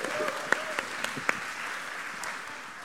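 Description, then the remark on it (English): A short burst of audience applause, a steady patter of many hands clapping at moderate volume with a few sharper individual claps standing out early on. “Let's give him a belated applause.”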